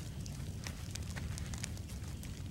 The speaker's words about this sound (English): Local technique, mate. The local technique of gas. Of gasoline, pouring a little bit of gas on the fire as a propellant.